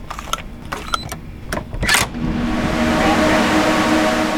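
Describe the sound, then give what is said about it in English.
A few sharp clicks and a door-like clatter, then a loud, steady roar of computer fans fills the rest, a constant whooshing hiss with a low hum underneath. It is the high-performance computing data center of the University of South Florida's Research Computing Center, a huge white room filled with racks of powerful computers. “It's a huge white room filled with racks of powerful computers. The fan noise is deafening.”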